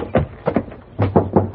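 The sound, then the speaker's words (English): Knocking on a house door: a couple of separate raps, a brief pause, then a quicker set of three firm knocks, loud over a faint low hum. “Hey, what you knocking for? This is my house.”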